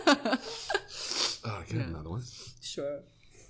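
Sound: nose blowing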